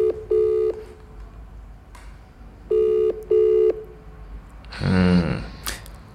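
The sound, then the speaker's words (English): A telephone ringback tone rings on the line of an outgoing call in clear double bursts, one pair and then a second after a pause, before a brief voice cuts in at the end. “And it's still ringing.”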